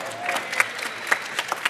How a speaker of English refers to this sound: from Team Spending, give them a round of applause again.